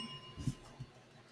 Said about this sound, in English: What, is that the first time I've got a question right? So we're digging that bell hard?